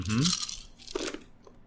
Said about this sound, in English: Lots of dice rolling ensues.